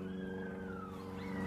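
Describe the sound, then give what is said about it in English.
A long, sliding howl wavers downward and then rises again as coyotes howl in response to a low-flying propeller plane, whose steady loud engine drone sounds overhead. “And after the plane had been around for a minute, the coyotes got real aggravated by it. And they told us their opinions about it.”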